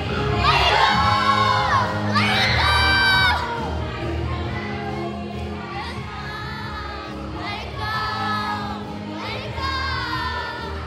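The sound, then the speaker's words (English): A crowd of children at the Camp Mariposa camp party cheers and shouts together, loud, with bursts of high-pitched yelling and whoops rising and falling over about ten seconds of continuous excited noise. “All right, camp Mariposa, make some noise!”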